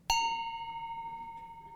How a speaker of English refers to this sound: And particularly, I think, my favorite sound of the Advent season, in the midst of all that chaos and confusion, no, this is not more cowbell, but my favorite sound of the Advent season is the bell.